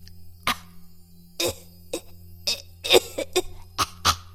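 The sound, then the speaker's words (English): A fit of harsh, repeated coughing, roughly eight or nine sharp bursts in quick succession, fairly loud, over a steady low background hum. “Apologies for the cough.”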